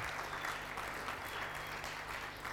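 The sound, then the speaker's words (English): A crowd claps steadily in a dense, continuous wash of applause at an even level for a couple of seconds, with a low steady hum underneath and no voices. “Come on, I deserves a bigger clap than that, guys.”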